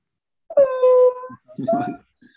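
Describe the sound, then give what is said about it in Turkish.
A cat named Tosun, an American cat, in a friend's house in San Francisco, meows twice: a long, drawn-out, wailing meow followed by a shorter, rougher one. Both are fairly loud and high-pitched, with no talking over them. “Amerikan kedisi.”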